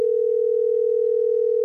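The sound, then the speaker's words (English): A steady, unbroken telephone dial tone, heard while a call is being placed, hums at an even, moderate level for a couple of seconds, with no voices or other sounds over it. “We're going to get Rob on the phone.”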